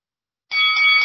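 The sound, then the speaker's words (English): A bell starts ringing abruptly and keeps sounding with a bright, sustained metallic tone, fairly loud, with no talking. “Sorry, let me just ring the bell.”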